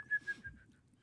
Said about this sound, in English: Just whistle? Mm-hmm.